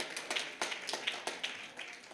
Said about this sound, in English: I want to say thank you to my wife. Can y'all give her a hand clap?